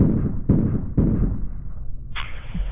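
Three gunshots from inside a house ring out about half a second apart, muffled and thin as heard over a police dispatch radio recording, followed by a burst of static hiss with no one speaking.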